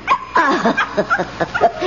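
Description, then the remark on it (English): A small dog, Chin Chin, yips and barks in a quick, excited burst of high-pitched sounds, fairly loud, with no one talking over it. “See, there he comes. Oh, he's so naughty.”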